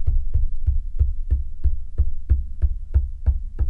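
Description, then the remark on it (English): A door bangs open and shut over and over in a fast, steady rhythm, about a dozen dull, heavy thuds, with no voices. “It opens and closes. Open, close, open, close, open, close, open, close.”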